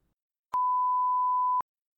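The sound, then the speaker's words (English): A phone beeps once with a steady, pure electronic tone lasting about a second, framed by small clicks at its start and end, heard alone against silence at moderate volume. “Oh no! The phone gods! We're gonna put a pause in this, I guess.”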